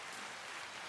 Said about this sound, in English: Claps. That's long. How long does it last?